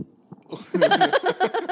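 A man lets out a long, loud belch, starting with a low grumble and swelling into a rough, pulsing, throaty burp that carries on for over a second.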